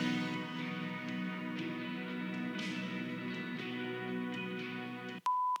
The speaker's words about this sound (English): Yeah, what was that at the end? It's a beep because it's got a second part.